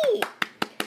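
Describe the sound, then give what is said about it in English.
Four sharp, evenly spaced claps ring out in a steady beat, as if an audience is clapping together in unison, right after a brief falling vocal sound trails off. “So let's give her one. I ain't. Everybody clap.”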